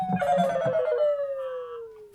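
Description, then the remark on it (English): A phone gives off a single sustained electronic tone that slowly slides downward in pitch for about two seconds, fairly loud, with a few low muffled thumps near the start. “It's the, I think your phone's gave up on you.”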